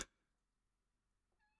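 cat

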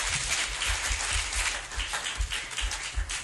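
audience applause

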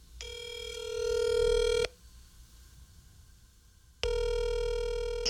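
telephone being dialed

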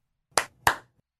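hand claps

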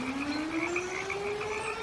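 frog croaking

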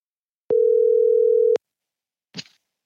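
phone call ringing tone

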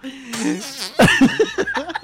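fart

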